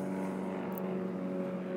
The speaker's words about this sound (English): You guys hear that airplane?